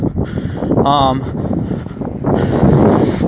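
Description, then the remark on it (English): Strong, cold wind buffets the microphone in a steady, loud rumble that persists throughout, with a brief burst of voice cutting through partway; the rain has just stopped. “Thankfully, it stopped raining, but it's really windy and cold.”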